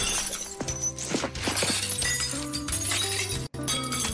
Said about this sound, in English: He can't just look through the glass. He's got to shove his face through the glass to get the sausage.